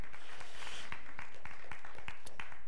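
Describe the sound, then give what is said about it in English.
An audience at a Freedom Day worship service applauds, a dense wash of clapping with sharp individual claps popping out above it in an uneven rhythm, steady for a few seconds with no voices. “Yeah, clap loud.”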